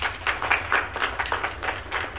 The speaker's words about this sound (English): Sorry, folks. If we could give her a round of applause.